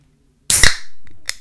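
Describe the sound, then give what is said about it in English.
A cherry Coke can cracks open with a loud, sharp double snap, followed by a bright carbonated hiss that fades out, then one more brief click. No one speaks. “That's that smell of cherry Coke. That's that snap, crackle, pop, baby.”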